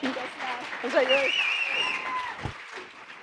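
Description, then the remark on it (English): An audience claps steadily for a few seconds, a dense patter of many hands, with voices calling and cheering over it before the applause thins out. “Give her a hand clap.”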